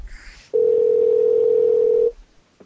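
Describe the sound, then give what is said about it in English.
A single steady phone ringing tone hums for about a second and a half on a call to a man, loud and unbroken, then cuts off, with no one talking. “Can we call him? Yeah, you can call.”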